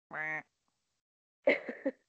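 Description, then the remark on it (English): A person imitates a duck with one nasal, buzzy quack, then after a short pause makes a quick run of two or three more rough, clear quacking sounds. “That genuinely sounded like a duck.”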